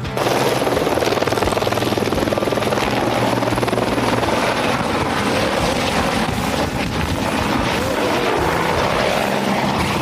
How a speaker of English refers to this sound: We watch on as each chopper, only a few meters away from us, lifts up, then simply nose drops straight off the edge of the cliff, only meters from where we're sitting.